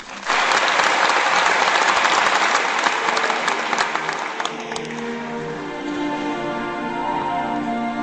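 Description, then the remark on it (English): An audience of over 1,000 people bursts into loud, dense applause welcoming a singer on stage to sing a Christmas song; it holds steady for several seconds, then gradually thins as sustained musical tones begin to rise underneath the fading clapping. “I know that my family, my biggest fans, are out there cheering me on.”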